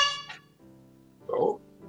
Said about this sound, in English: Honk once for pee and twice for...